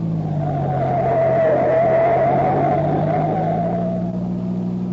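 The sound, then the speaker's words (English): A speeding green sedan with its lights off turns sharply right onto a gravel road, its engine roaring steadily for several seconds with a sustained whining tone that rises slightly and dips, a gritty rumble underneath and no voices. “The driver of the green sedan extinguishes his lights and turns sharply to the right.”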